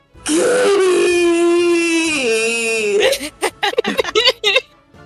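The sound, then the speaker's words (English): A voice imitates crying: a long, loud, drawn-out wailing whimper, followed by a run of choppy, breathy sobbing bursts that trail off. “She whimpers first and then full on bawls.”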